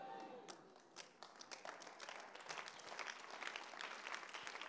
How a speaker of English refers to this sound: The Lord bless those who are clapping.